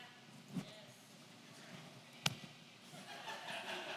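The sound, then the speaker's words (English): Two sharp, fleshy slaps land about two seconds apart as a speaker slaps their own chest with a palm during a Bible reading. The second hit is crisper. Faint hiss fills the gaps, and no one speaks. “I slapped my arm last week. I'm going to slap my chest this week.”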